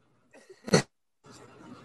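A single sharp sneeze: a short breathy intake builds up, then bursts into one loud explosive release, followed by a pause and some soft, noisy rustling.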